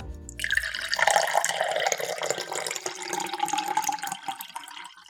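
Water gushes steadily from a tap, a bright splashing rush that starts abruptly after a brief low rumble and keeps flowing close and fairly loud, with no voices over it.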